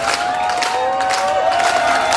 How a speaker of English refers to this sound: This was the scene at the Cancun airport Sunday night, as frustrated, angry travelers, unable to fly home, clapped and chanted.